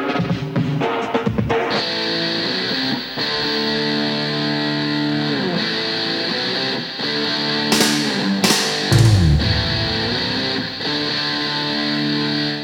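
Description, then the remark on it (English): Two heavily distorted electric guitars, one panned left and one panned right, play a thick, buzzing wall of sustained chords, loud and continuous, with a few brief pauses and sharp accents around the middle. “Two heavily distorted guitars, one panned left, one right.”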